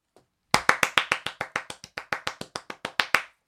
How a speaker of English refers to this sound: Out of the corner of your eye, you think you see the applause light flash. Ooh. Ooh. We applaud.